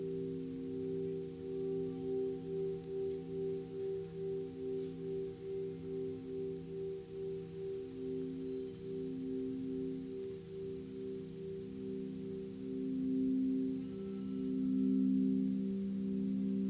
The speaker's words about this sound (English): So we can notice the sounds of the bells coming and going.